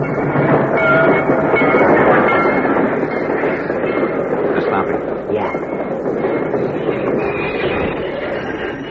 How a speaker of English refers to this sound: Because the flare which stopped the train has been planted at a carefully chosen point, the train is strung from one end of the cut to the other